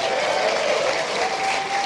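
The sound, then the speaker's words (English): An audience claps steadily in answer to being asked how many of them went to college, a dense, even wash of applause that holds at a constant loud level throughout, with no voices breaking through. “Well we got to hear clap, it.”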